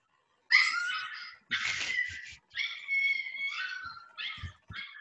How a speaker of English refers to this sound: No, it's a puppy, man. It's just fucking playing around.